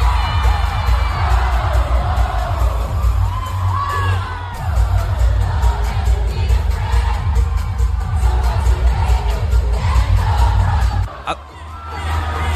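A loud concert crowd roars and cheers continuously as a band comes on stage, with whoops and shouts rising over a steady wall of noise and a thumping low rumble underneath, easing briefly near the end.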